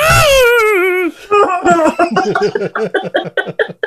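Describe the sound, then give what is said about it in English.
A man's voice lets out a long, wavering, moaning wail, imitating a whale call in the manner of Mandy Rose, which breaks into a rapid run of choppy, pulsing vocal bursts like laughter. “to just doing his Mandy Rose whale sound.”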